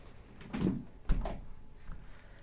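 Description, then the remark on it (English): A door is opened with a creaking, scraping rush as someone walks out, then swung shut with a solid thud moments later, fairly loud, with no talking. “Well, they can hear me leave the door. I'll just walk out.”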